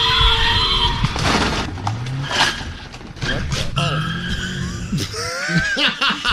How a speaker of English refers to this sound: And as he's doing the live report, an accident happens behind him. You see Hoover Street here. Officials say it's one of the most dangerous streets in all of Los Angeles.